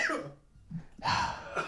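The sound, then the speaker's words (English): A short burst of harsh coughing from rice stuck in the throat, two or three rough hacks separated by a brief pause, loud and raspy as if someone is choking on something. “After the coughing fit.”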